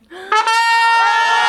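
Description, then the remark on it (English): A brassy trumpet sound effect: a quiet lower onset, then a single bright, sustained note that jumps in loud and holds steady for over a second, with no voices. “It was a different noise, but it was still a trumpet.”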